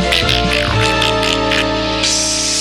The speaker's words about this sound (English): But play that first one again. Why does the pack dog sound like a pig after a tracheotomy?